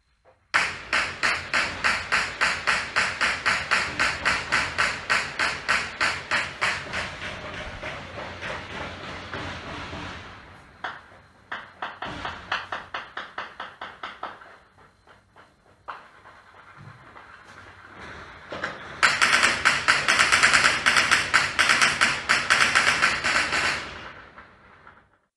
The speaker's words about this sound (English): This is video of someone in Afghanistan with the phone recording the sound of gunshots as the Taliban go door to door and the exterminations begin.